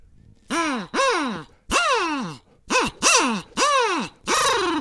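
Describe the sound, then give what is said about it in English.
A kazoo mimics a bird call with seven loud, buzzy notes, each swooping up and then sliding down, played in an uneven, hooting rhythm with no talking. “Oh, it's a barred owl just flew in here. Oh, it's a kazoo. A kazoo flew into your room and you're playing.”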